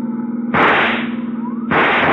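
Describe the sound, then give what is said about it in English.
Two loud, sharp rifle shots ring out about a second apart, each with a long reverberant tail, over a steady droning engine, fired from a pursuing car at the tire of a fleeing car. “See if you can use that rifle, Dollar.”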